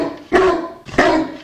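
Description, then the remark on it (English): Felix, a Bulldog mix from Wake County Animal Center in Raleigh, North Carolina, barks three times in loud, deep woofs spaced about half a second apart, with no talking around them. “The other one is Felix, the Bulldog mix.”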